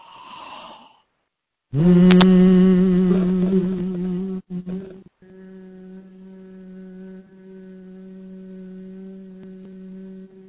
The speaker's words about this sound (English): But there's a definite sensation that you will feel at the bottom of your spine if this is your right note while you're humming it. So just take a deep breath and hum this note with me.